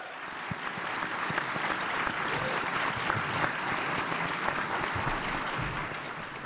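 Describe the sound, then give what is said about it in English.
Sustained applause from an audience welcoming guests Dr. Matthew Barrett and Jared Wilson to the stage, a dense, steady wash of many hands clapping at an even loudness for several seconds, with no voices standing out. “And to do that, I want to invite up a couple of guests, and I want you to applaud for them and to welcome them to the stage with me.”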